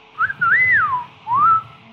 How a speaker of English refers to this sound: As you do this, … whistles.